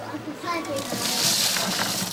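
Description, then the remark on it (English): Urine mixed with water pours and splashes onto the ground around the base of a plant as fertilizer, a steady, continuous stream swelling brighter midway through, with faint voices in the background. “Once mixed with water, it can also be used as a fertilizer. Pouring it around the base of the plant rather than directly onto it means that the nutrients reach the plant's roots.”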